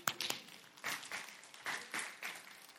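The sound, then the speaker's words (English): A small audience claps in a loose, scattered burst of applause, with individual claps standing out irregularly; it sounds fairly quiet, with no one talking. “That is the type of, you can clap for that.”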